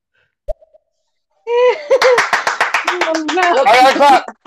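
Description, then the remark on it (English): A quick run of sharp, evenly spaced claps rings out, layered over a voice making drawn-out vocal sounds, after a brief click and a moment of silence. “I got a clap.”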